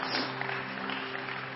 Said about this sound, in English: Give the Lord a big hand clap of praise.